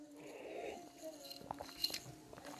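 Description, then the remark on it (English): A quiet sip from a drink, with a soft slurp and a few small wet clicks and swallowing sounds, and no talking over it. “I'm finna take a sip.”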